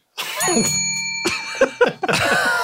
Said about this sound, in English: It's the tone control, and I once again forgot the bell until this moment.